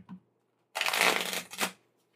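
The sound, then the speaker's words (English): A deck of playing cards is shuffled for a card game before dealing five cards each, giving one dense, papery riffle of about a second that ends in a quick second flutter as the cards settle. “Okay, I shuffle these, and then what do I do after that? You deal five each.”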